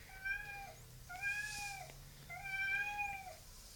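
A cat meows three times in a row, drawn-out, whiny cries spaced evenly with brief pauses, clear over a faint low background hum.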